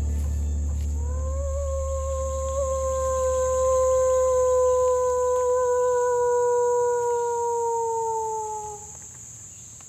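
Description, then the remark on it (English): A single long wolf howl at the Endangered Wolf Center in Eureka, Missouri, holds steady for about eight seconds, then slowly falls and fades. A constant high insect-like drone and a low rumble continue underneath, with no one talking. “Today, a trip to the Endangered Wolf Center in Eureka, Missouri, and the story of one extraordinary wolf who made the center his home and who gives us hope about the future of wolf survival.”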